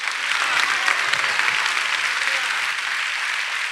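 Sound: audience applauding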